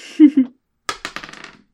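A handful of dice clatter onto a hard surface in a quick burst of sharp clicks that bounce and quicken as they settle, after a short murmured voice.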